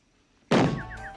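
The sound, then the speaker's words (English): A single heavy thud of a man throwing his head into a wall hits suddenly after silence, followed by a ringing, wobbly tone and a few short high Tweety Bird chirps fading out. “So I know we're listening, but he threw his head into the wall.”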